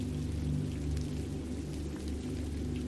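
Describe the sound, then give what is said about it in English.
Steady rain falls continuously with soft pattering drops over a low, constant rumble, with no voices. “You kiss in the rain.”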